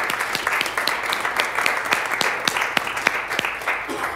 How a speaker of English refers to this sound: I heard that there's a couple here that's going into a new year. The 49 years, how many years is it? Yeah. 49 on the 27th. Let's just give them a hand of applause.